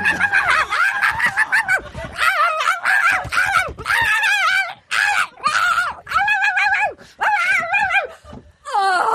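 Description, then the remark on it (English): A voice imitates dolphins squeaking like puppies: a loud run of high, wavering squeals and yips in quick bursts, one after another, with no talking in between. “Dolphins imitating puppies.”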